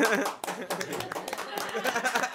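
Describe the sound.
A crowd breaks into dense, steady applause for the Giants football team, lasting a couple of seconds, many hands clapping at once with a few voices and cheers mixed into the noise.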